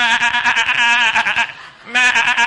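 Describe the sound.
A person imitates the distressed bleating of a sheep that has fallen over on its back, a strained, wavering baa held for over a second, a brief pause, then another loud quavering bleat, alone.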